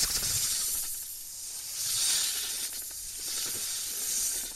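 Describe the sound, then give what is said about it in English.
A long, breathy snake hiss sound effect, steady and airy, swelling in loudness a couple of times as it continues without pause for several seconds, fairly loud with no voices. “That is a long snake hiss sound effect.”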